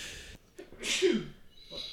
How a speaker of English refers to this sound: Turned off the mic before I sneezed. You're welcome.